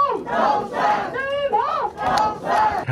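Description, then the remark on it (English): DPP caucus whip Ke Jianming and party lawmakers in Taiwan, each holding a rose, cheer in unison for Taipei mayoral candidate Chen Shizhong and Taoyuan mayoral candidate Zheng Yunpeng, loud rhythmic shouted chants rising and falling in bursts with layered voices, sustained throughout. “Each with a gifted rose in their hand, DPP caucus whip Ke Jianming and party lawmakers cheer for Taipei mayoral candidates Chen Shizhong and Taoyuan mayoral candidate Zheng Yunpeng.”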